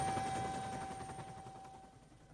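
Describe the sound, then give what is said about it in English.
A helicopter flies off after dropping a team on a narrow island's grass, its rapid rotor chop thudding steadily over a high engine whine, the whole roar gradually fading in loudness. “We're all stretched here on the grass, and the island is much narrower than we thought it was, and the helicopter is now making off again.”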